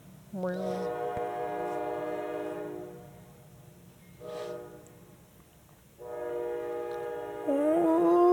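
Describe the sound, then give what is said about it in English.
A passing train sounds its horn in three loud blasts: a long sustained chord, a brief short toot, then another long blast, over a low rumbling background. “Still on a train break.”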